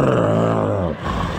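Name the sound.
imitated loud snoring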